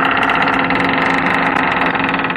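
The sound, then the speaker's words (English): A dry, rusty metal hinge being bent back and forth squeaks loudly and continuously as its bare metal parts rub with friction. It is a harsh, grating screech that holds steady for the whole moment, with a rough, buzzy edge and no voices. “What you hear that annoys you so much is really just the sound of friction as two pieces of bare metal rub”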